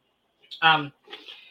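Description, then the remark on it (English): A single short, low, voiced burp rises abruptly and fades within a fraction of a second, followed by a brief breathy exhale. “I have been burping ever since the show started.”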